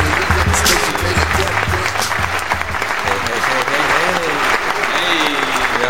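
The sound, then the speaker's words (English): Loud, sustained applause from a large crowd giving a standing ovation, dense and continuous for several seconds, with scattered voices and cheers mixed in beneath the clapping. “Standing ovation.”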